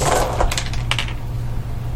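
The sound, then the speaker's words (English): A handful of 20 dice clatter and tumble across a hard tabletop during a game in a quick burst of sharp clicks, settling within about a second over a low steady hum. “Just roll them in batches.”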